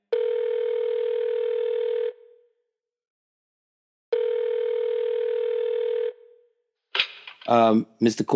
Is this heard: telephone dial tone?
yes